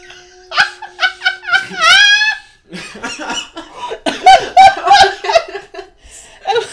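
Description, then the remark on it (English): A dog vocalizes in a rapid string of varied noises, high whining yelps sliding up and down, then choppy snorting grunts and huffs, fairly loud with brief pauses between bursts. “My dog makes different noises.”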